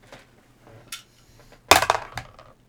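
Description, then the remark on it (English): Dice roll and clatter on a hard table for a perception roll: a few light clicks first, then a louder burst of rapid rattling that tumbles and settles within a second or so, with no talking. “Perception. Alright. Dice.”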